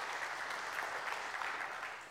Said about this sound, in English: And so I want you to say, we applaud you, ladies. We applaud you.